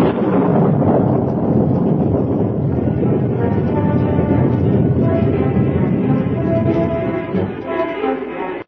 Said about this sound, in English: Without hat or coat, unafraid of the storm, Sue ran into the night, saddled a mount, and urged it toward town at breakneck speed.